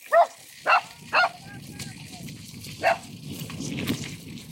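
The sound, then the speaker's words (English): Small dogs bark in a few sharp, separate yaps, three quickly in a row and one more after a pause, over steady low outdoor rumble. “Yeah, that's fucking rude of them to not call their dogs back.”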